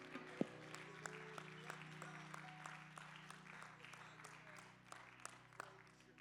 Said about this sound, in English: Would you clap your hands to the Lord and somebody shout hallelujah?